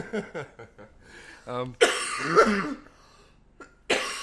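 A person coughs hard several times in a loud burst, with a throat-clearing rasp and a final sharp cough after a short pause; brief voiced sounds come just before.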